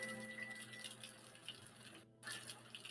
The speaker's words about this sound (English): We catch ourselves in a tight little back alley, drenched with rainwater. It's been coming down for a day or so. Looks like it might be on the way out, but hard to tell.